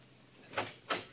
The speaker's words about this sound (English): I heard the door of the basement flat open, and then a tall, lanky character came out.